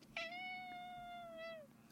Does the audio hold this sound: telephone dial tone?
no